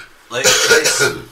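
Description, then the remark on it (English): A loud cough, a rough, breathy burst that breaks into a few quick follow-up hacks over about a second, heard alone with no talking. “I'm going to have a cough.”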